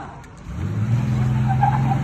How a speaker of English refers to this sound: So you'll hear the guy get hit by a car, and then you'll hear him, like, he basically, like, hobbles on one leg over to the lawn and lays down, but you'll hear him say something. Here comes the car. Listen.